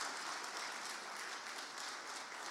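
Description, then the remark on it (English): A church audience applauds its volunteers who serve on teams, clapping steadily in a dense, continuous wash of hand claps, loud and even throughout with no voices standing out. “So guys, can we just give these guys a round of applause for serving in these teams?”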